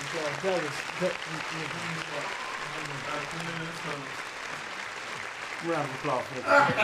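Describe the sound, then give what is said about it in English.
An audience claps steadily for several seconds, a dense, sustained patter of applause with men's voices talking loudly over it. “Round of applause, he right.”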